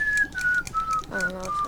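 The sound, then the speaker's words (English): Someone whistles a short tune, a string of clear, thin notes stepping gradually downward, with a brief hummed or voiced sound partway through. “Yeah, we could just whistle them.”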